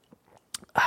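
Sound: sipping water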